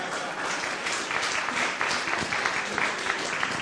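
A crowd claps steadily throughout, a dense, sustained wash of applause with scattered sharper claps popping out, moderately loud, no talking over it.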